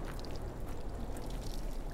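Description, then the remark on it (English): A steady hiss of air leaking from a loose joint on scuba gear, bubbling through a film of dishwashing soap, continuous and fairly even in loudness throughout, with no voices. “I'm checking now with dishwashing soap. It'll make little bubbles if there's a leak.”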